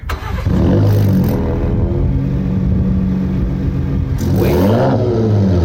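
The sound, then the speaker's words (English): A Ram TRX truck's exhaust idles with a steady, loud, deep rumble, then briefly revs up and settles back near the end. No one speaks. “I've got a recording of the exhaust that I did with it idling, just so you guys could hear it.”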